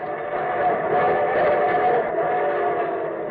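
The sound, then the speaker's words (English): A steam train whistle blows in a long, steady chord over the rumble of a moving train, loud, with no one speaking, as the opening effect of the radio show The Railroad Hour. “And from Hollywood, here comes the star-studded show train.”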